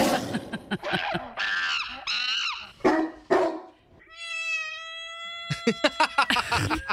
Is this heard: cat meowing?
yes